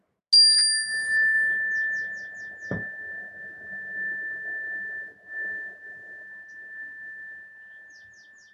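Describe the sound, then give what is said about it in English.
A single meditation bell is struck once to bring a meditation to a close, ringing out with a bright, clear tone that lingers and slowly fades, its sustained hum continuing for several seconds. “And then I'm going to ring the bell to gradually bring us out of this meditation.”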